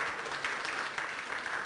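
An audience breaks into steady applause, a dense wash of many hands clapping at an even level with a few brighter claps standing out, no voices in the clear.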